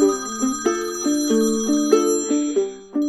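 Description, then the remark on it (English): A telephone rings with a bright, repeating electronic melody of stepped tones, steady and fairly loud, playing on its own without any voices. The phone is on its charger downstairs. “Oh, where's the damn phone? On the charger downstairs.”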